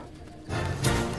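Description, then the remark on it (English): A low, drawn-out moo from cattle swells up after a brief quiet moment and carries on loudly to the end, with a rough, breathy edge over its deep droning tone. “Cattle.”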